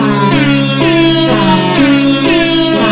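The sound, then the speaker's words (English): Loud, blaring air horn blasts play a rapid string of sustained notes that shift pitch every half second or so, forming a brassy, droning tune with no talking. “Then there's the air horn sonata.”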